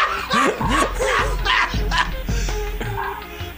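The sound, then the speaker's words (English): A dog barks repeatedly in quick, uneven bursts of sharp yelps, loud, over a rough, noisy background that continues after the barking eases. “Still barking.”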